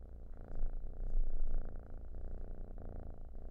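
A cat purring steadily, a low, rumbling, rhythmic vibration that swells slightly and keeps going without pause, with no voices.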